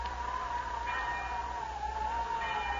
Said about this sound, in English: Listen. That's a school bell.